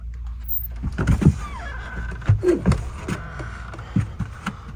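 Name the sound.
door being opened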